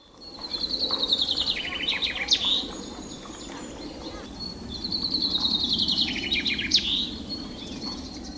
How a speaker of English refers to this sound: Birds from Flanders sing a song which ends with a particular flourish, which Flemish finch keepers, known as finconeers, call a suskeviet. Have a listen to this and see if you can pick it up.